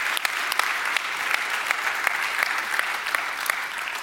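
An audience applauds in a steady round of clapping, many hands blending into a dense, even patter with a few sharper claps standing out, no voices over it.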